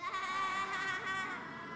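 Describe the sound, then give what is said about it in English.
A group of children imitates a sheep's bleat together, answering a question about what sound a sheep makes: a sustained, wavering "baaa" held for nearly two seconds. It is fairly loud, with no talking around it. “What sound does a sheep make?”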